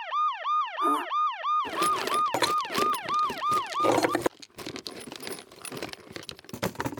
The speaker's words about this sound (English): You know that feeling of panic you get when you're woken by a call at 4 a.m? I recall such an instance. Not too long ago, my ringtone, Siren, erupted in the dead of the night.